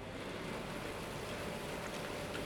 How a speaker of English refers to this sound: What the river means to me, I find the river exciting, but I find the boats on the river equally or more exciting because, hey, I'm not really crazy about rivers and lakes. I think the sound of the river has always been the same.